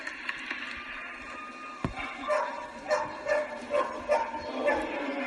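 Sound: dog barking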